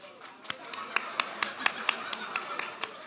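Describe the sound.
Hands clapping in a loose, uneven patter, roughly a dozen sharp claps over a few seconds, like a few people applauding together over a faint murmur of voices.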